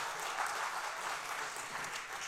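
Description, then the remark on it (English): Steady applause from a sizable audience welcoming a guest to the stage, a dense, continuous patter of many hands clapping at even loudness throughout, with no voices standing out. “you got a very good reception.”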